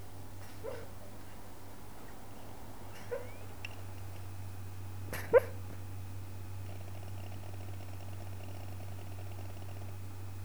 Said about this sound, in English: Is that the dogs having a dream? Yeah. Dogs is dreaming. What do you reckon she's doing in her dream?